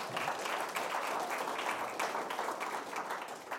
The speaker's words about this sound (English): And so, come on, let's give a hand clap for that. That's good.